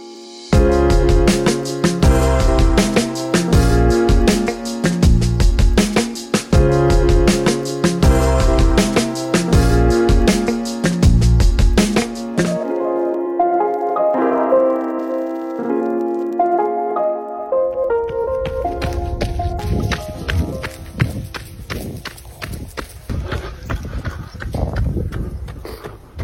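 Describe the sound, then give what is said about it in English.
Steady, rhythmic running footsteps pound alongside heavy breathing from a man out on a run, set against a sustained tonal musical backdrop that thins out partway through. “Those are the footsteps, that's the breath, and that's the voice of today's guest out on what is now something very common for him almost on a daily occurrence, and that is a run.”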